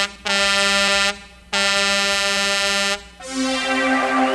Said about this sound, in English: That sound like a truck coming. That sound like a real truck coming.